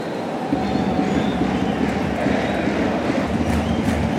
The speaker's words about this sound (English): Well, the rain continues to fall.